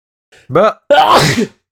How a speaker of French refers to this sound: Bon, l'éternuement, c'était mon highlight.